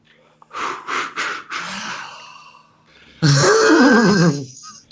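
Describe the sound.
A person does a vocal horse neigh: a few quick breathy huffs, then a loud, wavering whinny that trembles and slides downward for about a second before cutting off.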